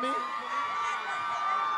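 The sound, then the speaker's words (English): Single ladies in a club crowd scream and cheer in one sustained, high-pitched roar of many voices, holding steady and loud for nearly two seconds with no break. “Single ladies, can y'all scream for me?”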